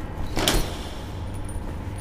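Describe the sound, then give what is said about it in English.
A short metallic rattle and clank as chained-shut doors leading to a pool are tugged, with a jangling, chain-like burst near the start, then a low steady hum underneath. “They're chained shut.”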